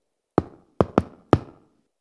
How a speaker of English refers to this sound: One day, a knock came at the door.